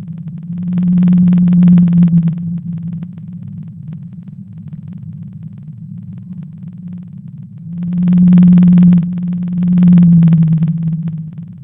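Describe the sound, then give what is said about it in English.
Blue whale calls underwater, from the South Pacific: two long, low droning moans, each a few seconds, with a steady tonal hum and faint crackle between them. No one speaks. “So here's a couple of blue whale sounds to compare to.”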